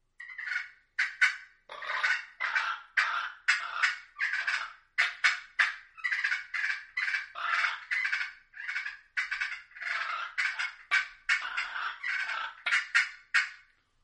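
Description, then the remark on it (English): Loud, rapid turkey fighting purrs made by one person on a mouth call and a slate call, raspy bursts and rolling purrs overlapping in quick agitated succession, continuous for the whole stretch with no talking. “But the purr on a mouth call for me, just trying to get loud, and I'll mix it up with this slate call. So this is a one man fighting purr.”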